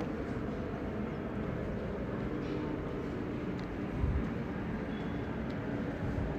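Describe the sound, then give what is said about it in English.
A steady, broad low rumble fills the whole stretch, an airplane droning as it flies overhead, with a slight swell around the middle and no voices. “Now listen to this sound of the plane, airplane which is flying above me.”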